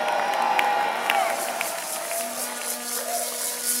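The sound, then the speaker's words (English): An audience shouts amen together, a dense wash of overlapping voices holding steady at a fairly loud level for several seconds, with a few higher cries rising out of the crowd. “Oh, those who are shouting amen, they are getting.”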